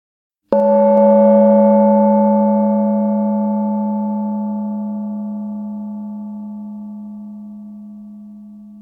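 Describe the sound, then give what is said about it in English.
A single gong stroke, sounded to begin a hypnosis session, rings out and its deep, humming tones hang in the air, slowly fading with a gentle wavering pulse over about eight seconds. No one speaks. “The gong is going to sound and then the hypnosis will start.”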